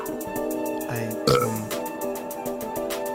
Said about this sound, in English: He's in the room. He's burping right now.